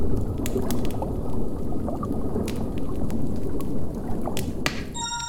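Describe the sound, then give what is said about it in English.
A steady rush of spraying water from a homemade shower device cleaning a person in a cave, hissing and splattering continuously for several seconds with a few sharp clicks mixed in and a brief high tone at the end. “I'm clean! Shower right. Iago invented it because, well, we live in a cave.”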